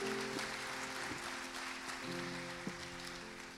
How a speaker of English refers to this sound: Let's give all of our graduates one last round of applause. Thank you.